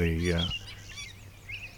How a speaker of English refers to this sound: It was a yellow warbler. There, that beautiful clear, sweet, sweet, sweet shredded wheat. That sort of thing. That's a yellow warbler. Okay. Bright yellow, beautiful bird.